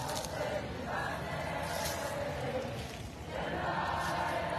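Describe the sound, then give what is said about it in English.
A crowd at a protest at Brown University cheers and shouts excitedly as students are brought through, in a loud, continuous roar of many voices, swelling in bursts with no pause throughout. “Listen to the crowd explode.”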